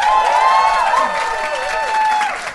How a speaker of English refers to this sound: Give me a round of applause if you have heard our podcast before.